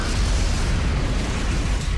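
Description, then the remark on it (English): A loud explosion sound effect rumbles continuously, a deep roaring boom with crackling noise layered on top, sustained at full strength throughout with no voices. “That's it. That's the explosion.”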